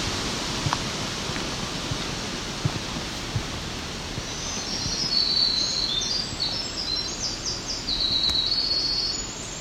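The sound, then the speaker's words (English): Birdsong of a winter wren and a black-throated green warbler, high thin trills and buzzy notes in the second half, partly buried under steady, rushing wind noise in aspen trees. “Winter wren, black-throated green warbler, right there.”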